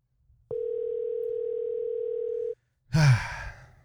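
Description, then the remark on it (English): A single steady ringback tone drones for about two seconds on an outgoing phone call, then cuts off, followed by a short, loud breathy vocal sound. “Answer your phone. Pick up the phone, baby.”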